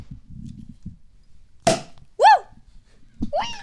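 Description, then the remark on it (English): After the wire basket is removed and the bottle is pointed away, a champagne cork pops once with a sharp, loud burst after low murmuring, quickly followed by excited rising vocal exclamations from people. “Are you ready? All right. I'm going to point this away. It's going to go up, up, and away.”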